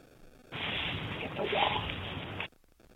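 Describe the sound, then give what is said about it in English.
Dry leaves crackle and rustle in a dense, continuous burst for about two seconds, fairly loud and gritty, starting and cutting off abruptly, in a recording uploaded by YouTuber Bunny Rocket. “You're going to first hear some leaves crackling, and I want you to tell me what you think this first EVP says.”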